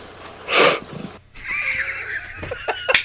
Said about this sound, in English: Are you going with the sniffle there? Yeah, the sniff at the end. I'm like, we could have trimmed that off, but I'm like, you know what? That makes this worth playing at 8:30 in the morning.